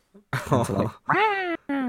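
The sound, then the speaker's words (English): A distressed cat, pinned in a corner with a microphone shoved into its face, lets out three loud, drawn-out, strained meows in quick succession with the echo of the mic, the last one cut short, with a faint squeak just before the first. “And it's like a cat, and they put a microphone up to it.”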